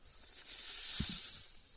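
A sustained, breathy snake hiss fills the short moment, steady and fairly loud, with a faint low thump near the middle and a sharp click right at the end.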